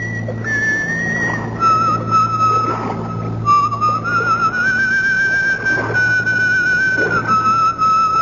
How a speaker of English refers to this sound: An apparition for you. A whistling, pipe-smoking lady with a cutlass at her belt.